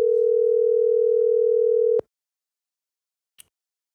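A steady, loud telephone dial tone hums for about two seconds while placing a phone call, then cuts off with a click; after a short silence, a single faint click follows.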